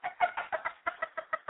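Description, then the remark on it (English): Chickens cluck in a quick, steady run of about ten short, moderately loud bursts, with no talking. “You talking about these birds?”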